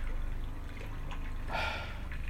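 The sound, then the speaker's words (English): Water trickles and dribbles softly and steadily, with a brief louder gush partway through, amid water in every direction. No one speaks. “there's just been nothing, just absolutely nothing but water in every direction.”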